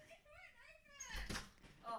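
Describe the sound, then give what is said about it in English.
A door hinge comes off with a sudden clatter and thump, a short burst of knocking noise after someone's raised, squeaky-sounding voice, with a second smaller rattle at the end. “A door hinge just came off.”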